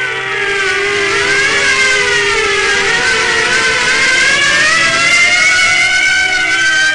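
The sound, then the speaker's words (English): Sirens wail steadily and loudly, their overlapping tones slowly rising and falling without a break, with a low rumble of traffic underneath and no voices. “At the sound of the sirens, Marv's huge bulk quivered.”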